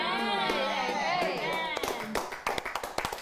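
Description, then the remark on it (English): An audience's voices ring out, then give way to scattered, uneven clapping: a thin, irregular patter of sharp hand claps rather than a full, loud round of applause. “Your clapping is too small.”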